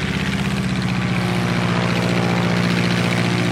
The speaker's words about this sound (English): The sound of the plane was deafening. So my instructor was shouting instructions in my ear for me to hear,